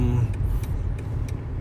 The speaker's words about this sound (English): This is a great thing with LA traffic is when you're not paying attention and you've got to sneak into another lane and you're not sure if you're gonna make it. So we'll see how this goes right now.